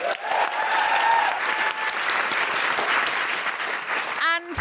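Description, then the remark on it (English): An audience at the Sam Wanamaker Theatre at The Globe applauds loudly and steadily for several seconds for Dr. Farah Karim-Cooper, a dense wash of clapping that ends with a short rising tonal blip. “Can I have an absolutely huge round of applause for the wonderful Dr. Farah Karim-Cooper?”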